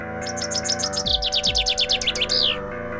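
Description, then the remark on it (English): A bright, whistled bird call of rapid high chirps, trilling in quick repeated bursts and rising into a final sweep, over a low, steady musical drone. “I pull out the staff of fur calling, play it like a flute.”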